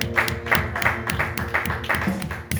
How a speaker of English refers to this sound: Let's clap our hands under the Lord.